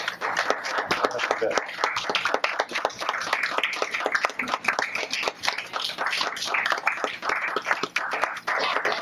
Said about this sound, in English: So, okay, well, maybe we could have everybody that read come up one more time just for a round of applause. So stand up.